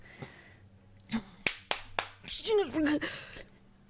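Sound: loud hand clapping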